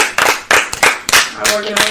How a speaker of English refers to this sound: Let's clap up.